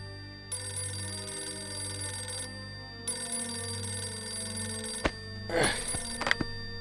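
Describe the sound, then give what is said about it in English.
An old-fashioned telephone bell rings loudly in two long, steady bursts with a short pause between, a phone call at 5:40 a.m. to the home of the mayor of Bay Village, a suburb of Cleveland, Ohio, on Lake Erie. A sharp clatter and rustle follows, as if the handset were lifted. “But at 5:40 a.m., one phone call changed everything.”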